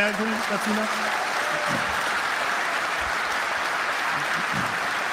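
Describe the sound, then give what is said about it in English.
A crowd of Bayern fans claps steadily in a dense, continuous wash of applause, with a few faint voices murmuring underneath throughout, applauding a fan's call for the club not to renew a sponsorship. “So this fan is asking them to let that sponsorship run out and not renew, and that's what they're clapping for.”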